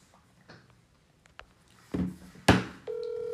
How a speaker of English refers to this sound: Now we're really going to get a fucking phone call while we're talking. We'll have to ignore it.